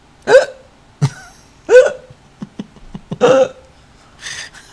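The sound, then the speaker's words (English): A series of sharp hiccups, four or five loud gulping bursts spaced irregularly, with a few softer clicks between them and no talking. “I've seen you get the hiccups.”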